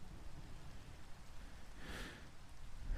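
Steady, soft rainfall hisses evenly throughout, with a low rumbling undertone and one brief swell of louder patter near the middle; no voices are heard.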